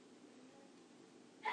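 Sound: sneeze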